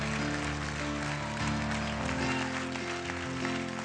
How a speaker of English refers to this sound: How many know that God is a powerful God? Come on, clap your hands. Somebody shout, hey.